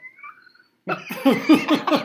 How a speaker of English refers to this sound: Okay, that's my dogs. What the heck was that? Squeak toy. Squeak toy, Leia.